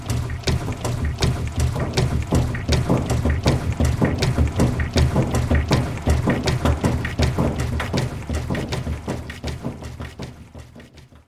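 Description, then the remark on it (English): Loud, steady mechanical clicking and clanking from a washing machine's workings, repeating in a fast, regular rhythm with a low rumble underneath and no voices, fading slightly near the end. “it was made entirely of sounds from a washing machine.”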